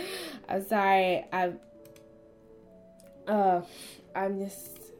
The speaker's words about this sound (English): If you hear like a lot of clicking, that's me on Amazon